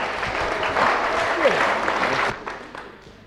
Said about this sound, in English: Just look at him. Give him a good clap. Go on.